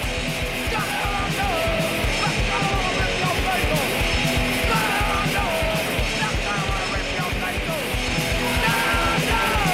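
A punk rock song blasts at a steady, loud level with pounding fast drums, a dense wall of distorted guitar and shouted vocals.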